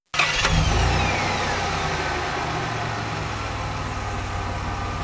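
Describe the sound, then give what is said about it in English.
An old motor car engine, started by turning its crank handle in a yard, bursts abruptly into a loud, rough rumble, then keeps running steadily with a buzzing mechanical chug for several seconds. No voices are heard. “"I wonder," he said to himself presently, "I wonder if this sort of car starts easily." Next moment, hardly knowing how it came about, he found he had hold of the handle and was turning it.”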